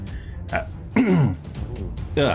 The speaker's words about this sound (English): cough, cough.